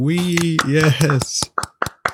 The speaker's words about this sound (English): And you're listening to Reality with a Twist, the very first podcast episode. If we can get a round of applause for that.